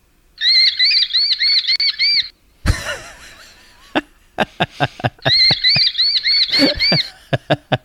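A baby falcon gives rapid, high-pitched squealing calls in two close, loud bursts, separated by scuffling, rustling and sharp tapping clicks.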